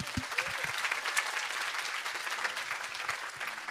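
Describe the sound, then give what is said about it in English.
Steady applause from an audience in a tent, a dense, even patter of many hands clapping at moderate volume throughout, with no one speaking over it. “Yeah, you can clap that.”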